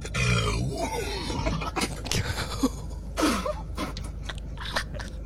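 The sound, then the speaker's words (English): A loud, guttural burp rumbles out low and rough, stretching over several seconds in ragged, strained bursts with raspy breathy catches between them, and no talking over it. “That burp had visible sound waves.”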